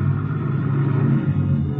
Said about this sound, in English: Just as I get there, I hear a car winding down the long driveway, so I duck into the bushes.